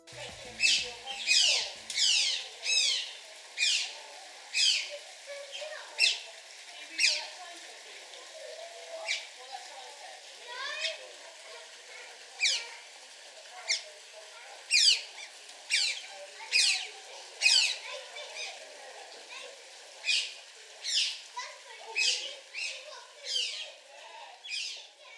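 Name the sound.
two otters squeaking playfully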